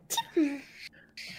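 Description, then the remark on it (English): A single sneeze: a quick breathy intake and voiced burst, then a sharp hissing exhale and a second short puff of air. “Does Demi sneeze like that?”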